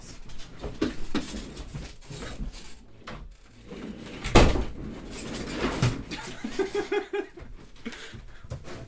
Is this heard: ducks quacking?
no